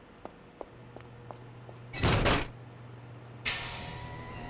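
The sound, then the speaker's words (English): A few soft clicks come first, then an office door slides and thuds shut with a short whooshing burst. A steadier hiss follows, with no one speaking. “Go to my office, shut the door, and hold your tongue.”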